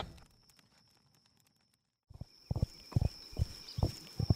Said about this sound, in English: On a single horse, Bree, Myrtle, and Jinquil ride west toward the river